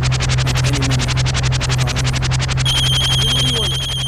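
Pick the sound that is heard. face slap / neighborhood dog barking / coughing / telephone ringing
telephone ringing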